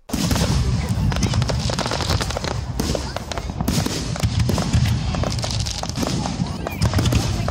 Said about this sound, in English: Fireworks were being let off, exploding in the valley below, bringing in the new year with a bang.